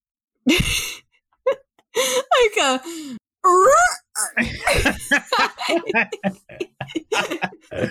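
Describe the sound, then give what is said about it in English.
A voice imitates a creature's roar, like a T-Rex mixed with a walrus, with a series of breathy groans, gasps and rising, warbling growls, some strained and drawn out, with short pauses between them and no clear words. “Like a T-Rex mixed with a walrus.”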